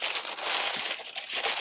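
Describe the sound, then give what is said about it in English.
Steady, dense crinkling of brown paper packaging from a package holding Corridor Magazine, cut open with a razor, a continuous rustling crackle with slight swells, as if it is being pulled out and handled, with no voices. “Inside is basically like brown paper packaging.”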